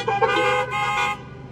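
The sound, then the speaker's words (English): Car horns honk in a sustained, blaring burst lasting over a second, loud, with the tone shifting slightly as overlapping horns sound together before tapering off. “Better honk on that one.”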